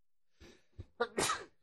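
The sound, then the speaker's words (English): A single loud sneeze: a few short, catchy inhales build up before one sharp, explosive burst of breath, with no talking around it. “Excuse me. Bless you.”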